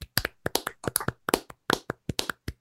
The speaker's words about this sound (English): So as we do at the end of every bracket, we are going to clap it out for our king, Thumper.